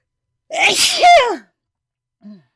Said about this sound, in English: sorry. I had a sneeze.